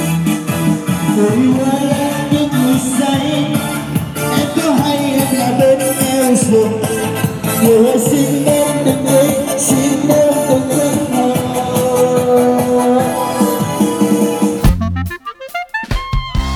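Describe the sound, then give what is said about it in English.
Amateur karaoke singing, strained and wobbly, rides loudly over a full backing track for about fifteen seconds, then the music breaks into choppy, stuttering fragments. “And in at number one, it's bad karaoke.”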